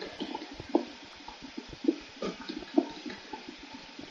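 Water being let out in a video game rushes and churns steadily for a few seconds, broken by irregular gurgling splashes and bubbly pops. Moderately loud, with no voices over it.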